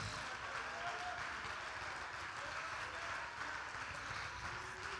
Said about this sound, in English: Oh, clap your hands and shout unto God.